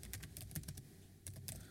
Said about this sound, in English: You're going to have to keep talking while I'm typing.